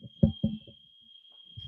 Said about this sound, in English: I think there's a fire alarm going off, so give me 1 second. All right. Did you hear that? Yeah, I was wondering what that was. It's probably like one of the neighbors. It's not here.